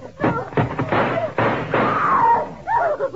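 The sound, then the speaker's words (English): A door is kicked in by police going in after a man, with several heavy, booming thuds and crashes in quick succession, followed by brief strained vocal sounds toward the end. “When I kick this door in, be standing there with your hands up or we start blasting.”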